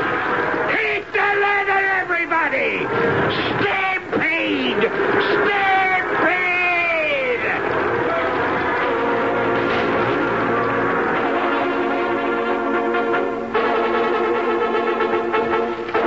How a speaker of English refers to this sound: Stampede! There is no measure of a stampede, no rationale, no reason. The slightest sound, a sneeze, or the rattle of a cook pan is just as liable to set it off as a loud sound, like the screaming of a dude's frightened horse.